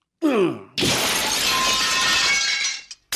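A brief ringing knock, then a mirror struck with a drinking glass shatters in a loud, sustained crash of breaking glass that lasts about two seconds, ending with a short final clatter of shards.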